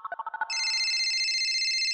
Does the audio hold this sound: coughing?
no